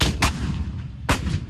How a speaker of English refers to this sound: Just a few seconds with the AS90 gun, and this exercise seems appropriately named. Capable of firing up to 24 kilometres, the 26 Regiment Royal Artillery is their role to protect forward troops, often firing at enemy targets close to them.